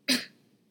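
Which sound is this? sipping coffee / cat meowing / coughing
coughing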